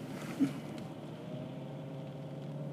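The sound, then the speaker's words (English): A car engine hums steadily at low revs, a continuous drone as the vehicle is slowly maneuvered into a parking spot, with a brief soft bump early on and no voices. “Excuse me, now I'm parking a car.”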